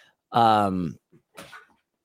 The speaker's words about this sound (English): So, oh my goodness, this dog is driving me crazy.